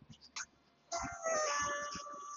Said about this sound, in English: I'm walking up to my house. I'm standing in public. And I'm playing the Pokemon music loud and proud from my phone.